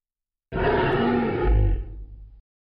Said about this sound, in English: Please, for goodness sake, the lion's getting closer.